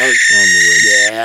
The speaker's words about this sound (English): You want to hear a sound of a barn owl? You are a scientific guy. Let's hear what you got. This is what we do. This is a barn owl.